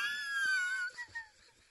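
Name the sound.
man snoring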